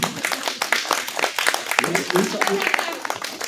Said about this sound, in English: Very grown up. Round of applause.